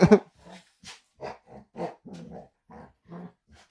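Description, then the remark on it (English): A golden retriever growls excitedly, starting with a sharp loud burst and then a string of short, rumbling grumbles at an uneven, playful rhythm, with no one talking. “Dude, I think this is my dog, like reincarnated, and she's just like excited to see me because this is my first dog growing up.”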